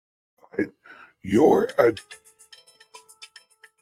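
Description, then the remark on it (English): A voice briefly at the start, then a rapid run of short, bright electronic chimes and pings from a phone buzzing with one incoming alert after another, moderately loud. “Dude, my phone's blowing up like crazy.”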